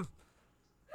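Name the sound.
sneeze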